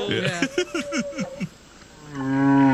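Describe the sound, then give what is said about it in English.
A whale calls: a quick series of descending harmonic groans, then a short pause before a long, steady, resonant moan that swells louder toward the end. “That's either a whale or me at breakfast.”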